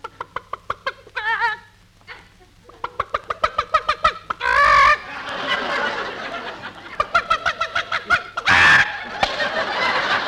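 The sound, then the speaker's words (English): A hen sitting on its nest clucks in rapid, rhythmic bursts, broken by two loud squawking cackles, with the clucking running steadily for about ten seconds. “look at that hen sitting on the nest.”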